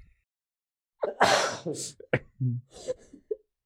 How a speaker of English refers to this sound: I think I can help them by pretending to sneeze to hide my hands better, to help pull the moisture out of the clay to make it more slippery so it falls off better. And then Amok sneezes very loudly like a fifth grade English teacher.